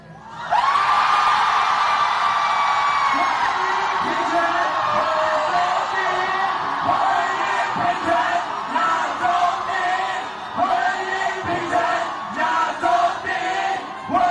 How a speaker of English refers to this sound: Taiwan passed a gay marriage bill, becoming the first place in Asia to legalize same-sex marriage. Here's some sound from the moment the crowd heard the final count for the bill.